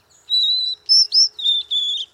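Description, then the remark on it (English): A male white-throated sparrow sings a clear, whistled serenade to a female: a long steady note followed by a few higher, quick phrases and two more sustained whistles, alone with no voices. “The serenade of a male white-throated sparrow prompts a response in a female sparrow's brain that resembles that of humans listening to their favorite music.”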